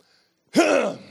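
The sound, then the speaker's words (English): After a short silence, someone clears their throat once: a sudden, rough, gravelly rasp with a low voiced edge that holds for about half a second, then fades. “Clear my throat on that one there.”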